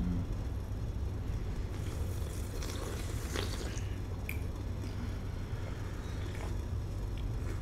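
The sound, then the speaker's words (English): A few soft, brief slurping sips of tea from a cup, quiet, over a steady low background rumble with no talking. “He deserves silent slurp.”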